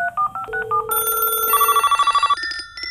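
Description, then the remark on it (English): A quick burst of telephone dialing tones, short beeps stepping through different pitches, followed by a steady electronic phone ring pulsing rapidly, all loud with no voices. “Time to hit the phones.”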